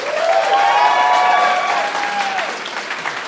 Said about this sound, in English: It's a Sanders crowd, I think. But wait till Jeff makes up his mind after November. That crowd, that applause is going to shift.